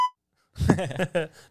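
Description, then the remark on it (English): A single short electronic beep from a pressed button sounds at the very start, crisp and fairly quiet, followed after a brief pause by a person's voice speaking. “Beep.”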